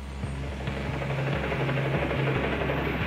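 Helicopter blades thump in a steady, rapid rhythm as a helicopter hovers just above the roof of a prison, over the solitary confinement wing, around 3 p.m., heard inside the jail cells; a loud, continuous low droning beat with a broad roar of rotor wash and no voices.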